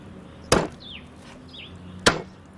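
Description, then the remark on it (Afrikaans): Two sharp, hard slaps about one and a half seconds apart, a shoe smacking down at a spider to kill it, with faint high chirps in the quiet between them. “Oh, vat jou skoen en dan slaan jy die spinnekop dood, my kind.”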